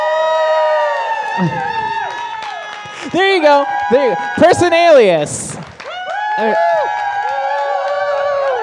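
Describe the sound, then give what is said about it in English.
A crowd cheers and whoops in overlapping voices, with a burst of clapping and louder shouts in the middle before the cheering settles back to a steady roar. Someone speaks briefly over it. “Unironically, can we please make some noise?”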